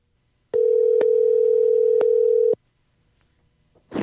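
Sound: telephone dial tone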